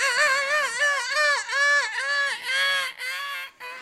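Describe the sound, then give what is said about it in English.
A run of loud, harsh seagull calls, several nasal squawks following one another in quick succession with a rising-and-falling pitch, with no talking. “Send seagulls after seagulls after seagulls.”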